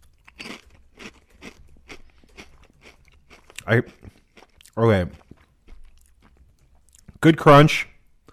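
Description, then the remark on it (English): Loud crunching of someone chewing crunchy spicy chips in a steady rhythm of bites, followed by a few short voiced murmurs and sounds between mouthfuls. “Good crunch. Good flavor.”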